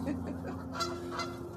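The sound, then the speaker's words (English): Ducks call outdoors by a lake with a couple of short, nasal honks rising over a steady low background hum, moderately loud, with no one talking. “I hear these ducks out here.”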